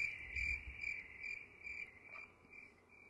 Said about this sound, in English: Prior to starting the His Story section, you will hear the sounds of story time, campfire, outdoors, the sound of the outdoors.